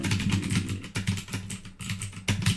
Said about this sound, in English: Yeah, I was going to say mechanical keyboards as I bang around on my Browns. I'm going to take a note about that. I heard it's really good to bottom out the keys. That's what you're supposed to do with the mechanical keyboards.